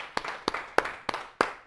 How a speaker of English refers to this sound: Right. We need to applaud that, absolutely.